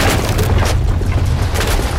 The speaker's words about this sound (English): Sensing an opportunity, Bhaktan Bin dislodged the pillar holding up the roof, and with a swift kick, the entire roof came crashing down over Hotinh and his cauldron.